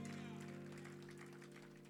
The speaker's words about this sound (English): Someone give Jesus a hand clap of praise this morning. Come on.